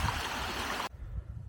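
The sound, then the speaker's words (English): A clear stream along a hiking trail in Wyoming rushes and flows in a steady, bright hiss, then cuts off abruptly partway through, leaving only a faint low rumble. No one speaks. “Look at all this water flowing nicely. Nice clear stream.”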